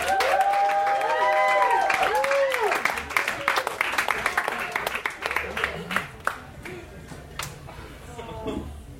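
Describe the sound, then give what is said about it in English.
An audience claps for the next performer, starting as a dense burst of applause with a few rising whoops and cheers, then thinning out to scattered individual claps before fading. “Clap your hands”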